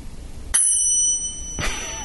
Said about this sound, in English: And now that we got the little chimes, we can really do it right.